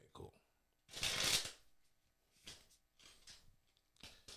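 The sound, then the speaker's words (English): A deck of playing cards being shuffled, with a loud riffling burst followed by several softer shuffles and bridging flutters, and a bit of talk in between. “Why are you shuffling them? I said I got to shuffle them up.”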